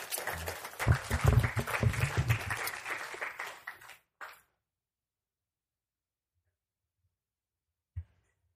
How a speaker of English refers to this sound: So as she comes, let's give her a round of applause as we just welcome her to share.